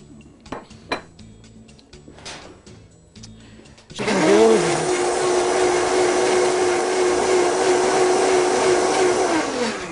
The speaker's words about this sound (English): Basically, you just want to blend this, okay?